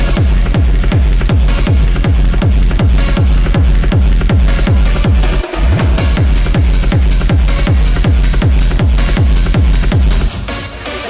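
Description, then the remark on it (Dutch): A loud, drum-heavy dance track pounds out a steady, fast beat with deep bass, broken by a brief drop midway before the driving rhythm resumes. No voices. “Draai ik speciaal voor jullie trommels, lopen jullie weg.”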